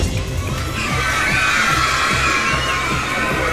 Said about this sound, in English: La fête foraine au jardin des Tuileries.